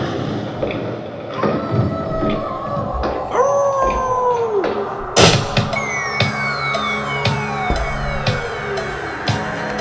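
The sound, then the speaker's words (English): A hungry dog howls and whines in long, wavering cries that rise and sag in pitch, loud, with a steady noisy background and no talking. “That's his dog crying.”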